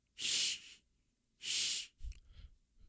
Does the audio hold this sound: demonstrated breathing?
yes